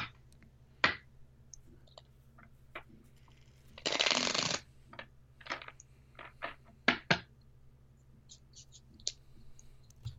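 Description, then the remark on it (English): A Coastal Lenormand card deck being shuffled for a card reading: a dense riffle burst near the middle, surrounded by scattered crisp card snaps and clicks, with no talking. “All right, let's see what we pull with the Lenormand deck.”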